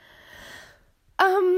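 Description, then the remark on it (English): A drawn-out, breathy sniff through the nose, fairly soft, followed by a brief pause before a voice abruptly begins speaking. “Sorry about sniffling.”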